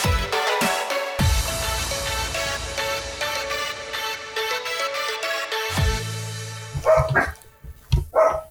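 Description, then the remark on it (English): A pup barks in short, sharp bursts, a few yaps near the end, following a stretch of steady tonal sound like a ringing melody. “We'll let your pup. Sorry. Get acclimated.”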